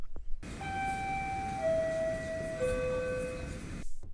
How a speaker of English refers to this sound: That's the sound of the TTC subway doors opening, and if that's your morning commute, it's a sound you know all too well.